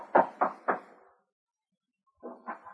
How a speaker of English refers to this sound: We hear him as he raps on the door of Jim's home.